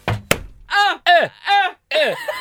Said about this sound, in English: I hit the table really hard. It just slapped something near you.